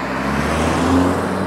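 A car's engine and tire rumble hold steady, a continuous low drone of road noise with no voices, as a car passes along a residential street, Applewild Drive.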